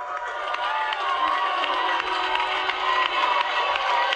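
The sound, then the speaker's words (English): A large crowd cheers and claps continuously, a dense roar of many voices with scattered clapping underneath, steady and loud throughout without pause. “At that point, you're hearing cheering and clapping.”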